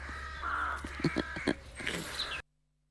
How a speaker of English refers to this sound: recorded this week in Dorset with some background singing for some lovely crows there.